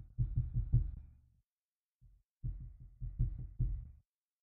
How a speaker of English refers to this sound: As far as I know, it's me knocking on wood.